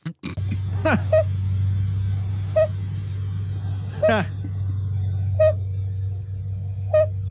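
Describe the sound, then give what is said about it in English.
A sleeping baby lets out a couple of soft squeaky, sliding murmurs over a steady low hum, while short beep-like tones pop up every second or two. “Now, here's the sound of a baby sleeping, but it sounds like he's like a automatic.”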